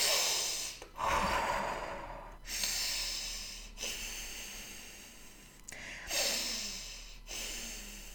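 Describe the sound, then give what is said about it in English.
A person demonstrates a deep-breathing exercise, breathing deeply and rapidly with about six loud, airy inhales and exhales in a steady rhythm and no talking. “So you take really deep breaths, basically a bit like this.”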